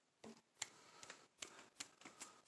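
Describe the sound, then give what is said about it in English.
A person lightly taps themselves with the blade of a pair of scissors about seven times in an uneven rhythm, each tap a soft, sharp click, fairly quiet with no voices. “I'm stabbing myself lightly with the scissors.”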